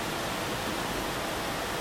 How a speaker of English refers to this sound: So poetic, the rain behind my voice right now.